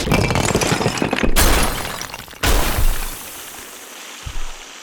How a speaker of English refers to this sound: The troll slowly moves towards her. It breaks all the sinks along the wall with its large club.